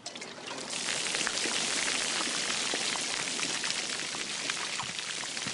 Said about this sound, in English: Easy Company, canteens out and open. On my command, they will pour the contents onto the ground. On the CO's order, you will upend your canteens. Now, Lieutenant. Pour them.